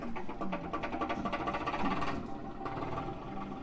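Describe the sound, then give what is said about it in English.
A diesel tractor engine, played by pressing a button at a museum exhibit, chugs steadily with a fast, even mechanical rhythm and a deep rumbling tone, holding a constant level throughout with no voices. “Let's give it a little bit of diesel noise.”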